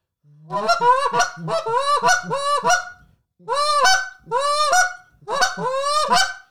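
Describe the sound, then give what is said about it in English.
A goose call blown in a run of loud, close honks: a quick string of throaty, reedy notes, a short pause, then several more bursts, closely imitating real geese with no talking. “But I know a lot of guys who can make a honk sound really goosey and in close. And this is like my rendition of that.”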